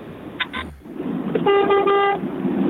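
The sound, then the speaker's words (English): A lorry horn blasts once for under a second, a loud steady harmonic honk heard from inside the cab while the lorry is being driven, over a low engine rumble, with no one talking. “I can hear you're driving your lorry as we speak. Do you want to give us a honk of the horn?”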